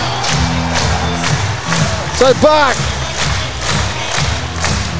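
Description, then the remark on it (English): A loud, dense basketball arena crowd at the Entertainment Centre roars and cheers continuously during a Breakers versus Sixers game, with sharp whoops rising above it and a commentator talking over the din. “This is probably the loudest it's been in here,”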